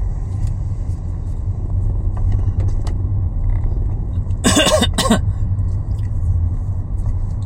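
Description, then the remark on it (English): Steady low rumble of cars on a road runs throughout, broken midway by two short, sharp cough-like bursts. “No, the cars are coming.”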